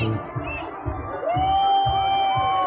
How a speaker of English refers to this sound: I know they yelled tink, but it sounded like, you stink!